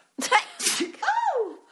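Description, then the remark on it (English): A single loud sneeze: a sharp breathy burst followed by a drawn-out vocal trailing tone as it fades, heard on its own with no talking. “I have to sneeze.”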